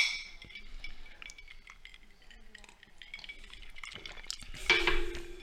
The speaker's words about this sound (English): Well, let's take a swig first now. Yeah, I'm getting a little bit ahead of myself here. All right. You want cheers? Cheers.